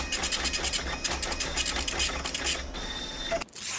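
A printer prints a report, running steadily for several seconds, its mechanical whir pulsing in quick repeated strokes with bright high-pitched chatter, then briefly pauses before starting up again. No one speaks.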